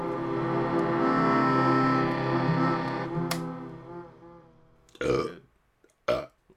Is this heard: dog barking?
no